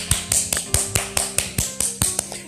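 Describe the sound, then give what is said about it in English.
A single person claps hands in a steady, quick rhythm as a round of applause celebrating a first anniversary, about ten sharp, crisp claps over a couple of seconds, with no one talking. “And just one time for the one time, I feel led to just go ahead and give that a round clap of applause.”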